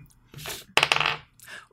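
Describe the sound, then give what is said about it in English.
A hard plastic twenty-sided die clatters across a tabletop in a quick burst of bright, rattling clicks and bounces, preceded by a soft shuffle and trailing off into a faint final tumble, landing on a natural 20. “That's a natural 20 up in this piece.”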